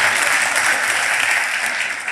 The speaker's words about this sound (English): Oh, give God a clap offering for a leaf mulcher.